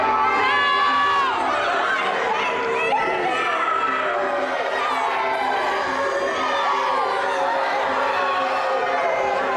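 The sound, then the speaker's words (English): A large arena crowd at a wrestling event roars and cheers continuously as a wrestler walks out, many overlapping voices shouting and whooping in a dense, loud wall of sound that stays steady throughout without letting up. “The crowd was loud for other matches, but when Dan walked out, it was next level.”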